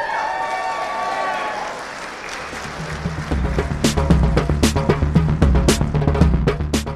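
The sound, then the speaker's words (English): An audience bursts into applause, many hands clapping in a dense, steady patter that builds and grows louder after a brief murmur of voices at the start. “I'm sorry, there's one thing I've learned from my sisters on the progressive left is that clapping is triggering.”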